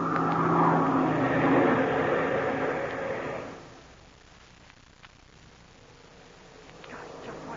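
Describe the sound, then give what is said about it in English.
A loud, steady airplane engine drone roars for about three seconds, then the pilot throttles down sharply as the plane goes down, leaving a much quieter, hissing hum for the rest. “The plane's going down the line break. And the best part of it all is that I had a swell look at that country before Sharp throttled his engine.”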